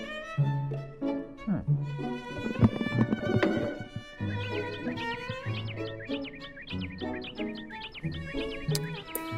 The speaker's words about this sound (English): That hawk sounding off.